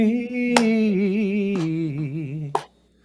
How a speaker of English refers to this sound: Slow clap. Giving you a little slow clap.